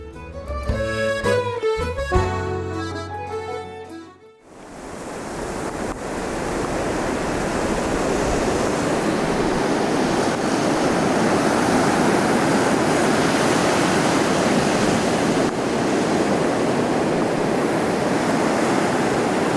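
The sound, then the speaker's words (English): A few seconds of tonal music give way to torrential rain on the beach at Lunan Bay on an overcast day: a loud, dense, steady hiss that continues unbroken with no voices. “the rain is chucking it down, so we're getting soaked on the beach”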